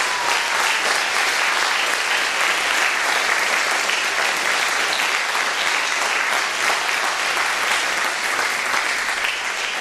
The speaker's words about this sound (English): Our thanks to all the choirs, the directors, and all the musicians who put this wonderful service together. Let's show them our appreciation with our applause.